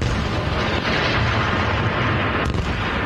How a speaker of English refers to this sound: Explosions as renewed fighting Israel and Hamas. The renewed combat operations come as Israel accuses Hamas of violating the temporary truce.